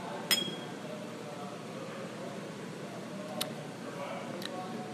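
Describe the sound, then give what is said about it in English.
A single bright clink of glasses in a toast during a vanilla vodka tasting rings out briefly near the start, followed later by a couple of fainter sharp ticks over a low, steady background murmur. “So let me take a taste, say cheers.”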